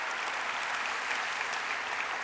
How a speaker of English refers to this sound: Can we give the Lord a clap, please? Thank you, Jesus.